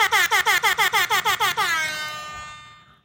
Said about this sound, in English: We're going to go ahead and bless you with the air horns the real way now.